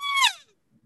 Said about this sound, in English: But that same person said, I traditionally use an open reed style cow call upside down too.